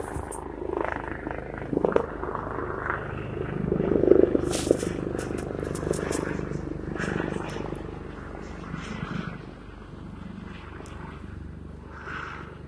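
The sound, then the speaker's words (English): A helicopter drones steadily overhead, looping nearby, its low rotor thrum swelling and easing slightly as it passes, loud and continuous throughout with no other sounds standing out. “Stupid-ass fucking helicopter.”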